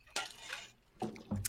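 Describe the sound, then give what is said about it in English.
A short watery sound effect played as a Mother's Day "drip drop": a few wet drips and splashy plops arriving in quick bursts, moderately loud, with no one talking. “We're going to hit him on time with a Mother's Day drip drop.”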